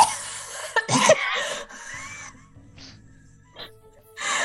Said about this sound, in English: I just, like, cough. I just start coughing.